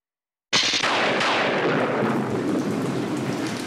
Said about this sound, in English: It's raining even harder than on Friday.